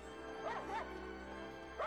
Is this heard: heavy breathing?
no